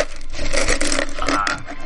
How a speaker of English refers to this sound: Like, in for those listening, all the slapping is the fruit fly infestation. And there are a lot of them in here. It's pretty remarkable.